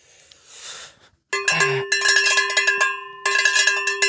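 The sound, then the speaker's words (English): A soft rustle, then a metal handbell, a beer bell labeled 'ring for beer', rung rapidly and repeatedly, with chips of metal flying off it. Bright metallic clangs over a sustained ringing tone, a brief pause, then another burst of fast ringing. “It's my beer bell. Does it work? It says ring for beer.”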